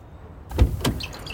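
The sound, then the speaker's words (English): A car door clunks open with a heavy low thud as the driver, just pulled into a parking lot, steps out, followed moments later by a second sharper latch sound, then a quiet outdoor hush. “I pull into the parking lot and step out of the car.”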